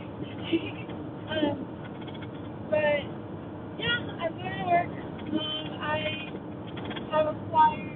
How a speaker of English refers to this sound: I am driving to work. This car behind me is going way too fast, so I can't really merge, so that's good for me, I guess.